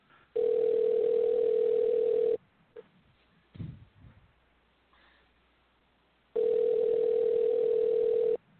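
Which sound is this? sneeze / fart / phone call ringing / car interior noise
phone call ringing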